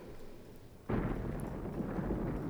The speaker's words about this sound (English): What was the point of these explosions? This is the battle. This is the front.